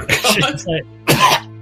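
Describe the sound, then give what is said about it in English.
A voice imitates a woman coughing up blood: a few wet, gurgling coughs and throat-clearing noises, then a pause and one more harsh, choking burst. “She starts like coughing up blood.”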